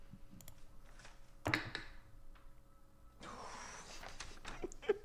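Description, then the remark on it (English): Dice rolled for a perception check clatter and rattle across a hard table, with a sharp knock followed by a short rolling tumble and a few small clicks as they settle on a 7, quiet with no voices. “Okay, fuck you, dice. That's a 7.”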